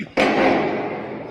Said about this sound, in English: So he lights a firework and just it goes, shoots into the building across the street. And it just curves and goes into the building. Sign. And it fucking blows up in the apartment.